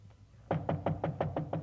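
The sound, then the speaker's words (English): Seven quick, evenly spaced knocks rap on the door of apartment number 408, fairly loud, after a faint tap at the start; no one speaks over them. “I get the door.”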